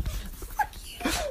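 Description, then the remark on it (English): A single sharp human sneeze bursts out near the end, aimed right into another person's face, preceded by a few faint breathy sniffs and small squeaky sounds. “I sneezed right in his face.”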